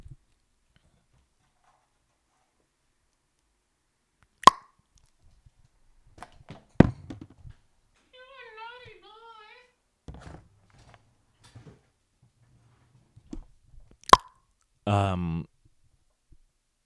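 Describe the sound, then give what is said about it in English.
A water bottle gets knocked over by a cat: a few sharp, loud knocks and clattering thuds scattered across the moments, with a short rattling scrape near the end. “and my cat just knocked over my water bottle.”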